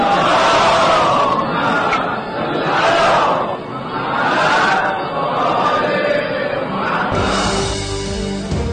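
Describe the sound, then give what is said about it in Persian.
A large crowd chants salawat together in unison, a loud rhythmic group recitation rising and falling in about four swells before the chanting fades and a lone voice begins speaking. “صلوات بفرستید.”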